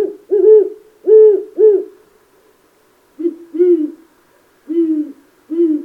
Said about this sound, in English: The normal call of the great horned owl is pretty much what you think of when you think of owls.